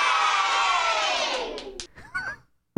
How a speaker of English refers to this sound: I'm not sure how to take that. That's my favorite cheer. It's the kids in the peanut gallery. No, actually, that was the city council. It was not.